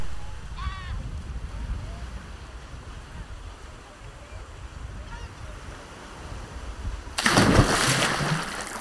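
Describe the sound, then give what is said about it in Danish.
Windy beach ambience with low rumbling surf and faint bird chirps, then a sudden loud splash near the end as something plunges into the water, followed by bubbling. “Det kan være, jeg lige skal cut et par sekunder af den der strandlyd, der kommer før plasket.”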